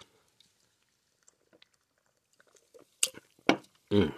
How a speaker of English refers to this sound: So I had to take a few sips before I started. So, you know, I'm going to be sipping through the podcast, but I need to take a sip right now.